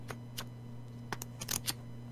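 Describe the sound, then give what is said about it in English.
A thick notepad filled with notes and sketches clapped shut several times, giving short, crisp papery slaps in an irregular series with a quick cluster near the end, over a steady low hum. “The clap of that notepad better alert the guards.”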